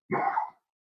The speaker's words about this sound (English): Oh my God, you're coughing, and now we're done. Yeah, we got the virus. I'm spreading it.